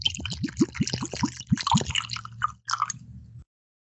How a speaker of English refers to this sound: Actually, let me pour mine now. I'm going to pour mine really close to the mic, see if we get something.